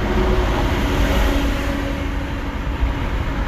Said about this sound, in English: All that being said, sorry y'all, this traffic, it got light a little bit, so you know, I'm flying through it right now. But thank you for joining me in the car.